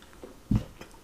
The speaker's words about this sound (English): Let's go ahead and raise these glasses. Let's make a toast. Chink, clink, clink, clink, clink, clink. And we're sipping.